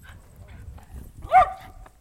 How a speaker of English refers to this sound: we got Goldie, our next door neighbor dog